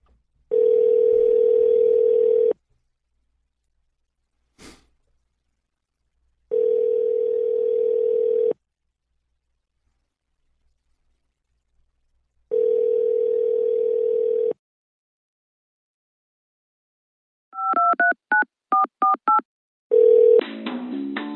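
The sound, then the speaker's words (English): Three long, steady, low phone tones sound in an even on-off pattern, followed by a quick run of about eight short two-pitched keypad beeps as a telephone dials the What is a Hotline Hotline, with no voices. “So, Kat, let's call that right now.”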